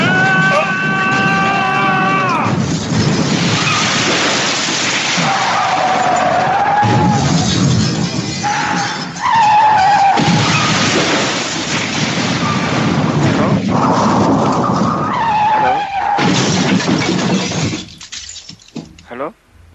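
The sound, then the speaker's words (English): A car skids out of control and flips over, tires squealing in rising and falling whines over a loud, continuous roar of scraping and crunching impacts, until the noise cuts off abruptly. “Oh, I flipped the car.”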